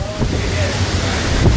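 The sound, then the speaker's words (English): Loud, continuous roar of strong storm wind gusting to about 120 at night, buffeting the microphone, a dense low rumble with a slight surge near the end and no pauses. “Definitely seeing 120 gust.”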